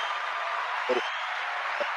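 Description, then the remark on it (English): Steady, dense clapping forms a continuous rustling wash of hand claps, with two brief bursts of a voice breaking through partway. “I'm gonna go ahead and clap it up for you.”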